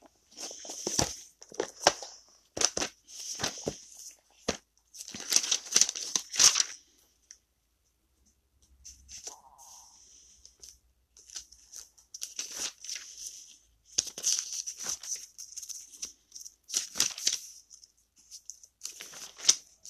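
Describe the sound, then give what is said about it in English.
Book pages being flipped: repeated crisp, papery rustles and swishes in irregular bursts, some sharp and loud, with a short quiet pause midway. No one speaks. “If y'all hear anything in the background, it's my dog, Dolly, and me flipping pages.”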